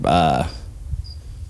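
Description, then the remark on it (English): A cricket chirps faintly in two short, high-pitched bursts, coming right after a brief voiced sound at the start, against a quiet background. “I'm gonna fucking kill this cricket.”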